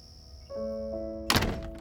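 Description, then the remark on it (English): A short mechanical hum gives way to a solid thunk as a door is shut and locked, the impact loud with a brief rattling tail; no one speaks. “Elsie shut and locked the door”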